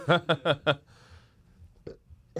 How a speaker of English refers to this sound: Okay. Just burp into your jumper. I didn't know where to throw it.